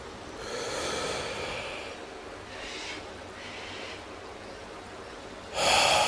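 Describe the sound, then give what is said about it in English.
A slow, deep breath drawn in through the nose and mouth during a breathing exercise, airy, lasting several seconds, followed by a short louder rush of air at the end. No talking. “Now let's start our breathing. Ha ki roto.”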